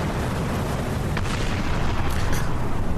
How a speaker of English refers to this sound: Truly, a couple of things are about to happen because you hear boom, boom, two explosions go off.